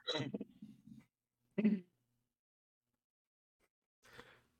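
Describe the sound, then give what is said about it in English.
Several short, abrupt hiccups from a man pop out at uneven intervals with silence between them, each a sharp vocal gulp, moderately loud, with no talking. “Oh, he got the hiccups.”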